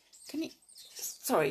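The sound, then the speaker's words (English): Noisy birds chirping in two short bursts of squeaky, high-pitched calls with a brief lull between them, fairly soft overall. “Can you hear those birds? They are so noisy.”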